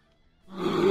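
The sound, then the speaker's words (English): A man's voice imitates a bear roar: a single rough, growling roar that swells in from quiet and grows loud, holding a strained, gravelly tone to the end. “He's over there roaring up a storm.”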